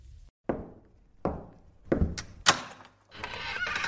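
Four solid, resonant knocks land on wood in another room at uneven intervals, each ringing out briefly, followed by a steady rustling scrape as a door is cracked open to listen. No one speaks.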